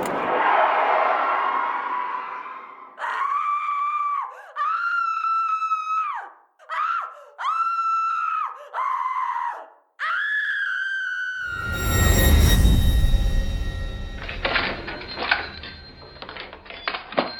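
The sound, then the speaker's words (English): Shrill, wailing music in a run of sustained, bending tones that sound like screaming. It breaks into a harsh noisy burst, then jangling, ringing clatter. No one speaks. “Music just sounds like screaming to me.”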